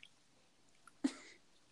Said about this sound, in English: I already heard the bath water.